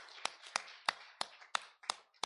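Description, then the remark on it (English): A group gives a hand clap of praise, clapping in a steady rhythm, seven sharp beats about a third of a second apart, over a continuous wash of softer clapping and crowd noise. “And all the time, give another hand clap of praise.”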